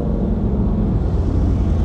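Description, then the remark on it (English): A motorcycle passes by, its engine giving a deep, steady roar, a dense low rumble that holds at an even, loud level throughout, with no voices. “Now again, if you just heard that motorcycle, that wasn't a safe motorcycle rider.”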